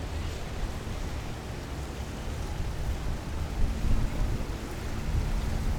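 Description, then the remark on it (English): Steady rushing of water around a boat at a boat party out on open water off Miami Beach, by the new Ritz-Carlton, with a deep continuous rumble and wind-like hiss that swells slightly toward the end; no voices. “Got a little boat party out here today.”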